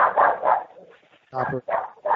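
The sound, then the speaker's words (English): A dog named George Brinson barks downstairs several times in quick, uneven bursts, moderately loud, with short pauses between the yaps. “George Brinson was downstairs, barking earlier. I was surprised that it didn't pick it up, to be perfectly frank.”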